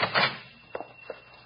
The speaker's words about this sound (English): I'll open the door.